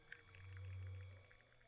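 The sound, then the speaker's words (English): A low, drawn-out moan imitating whale song swells up and fades away over a second or two, with faint higher whistly tones drifting above it and no talking. “is that you doing whale sounds, baby? Only my genius girlfriend could have picked up that those were my moans.”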